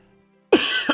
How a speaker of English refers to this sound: Pardon me for coughing.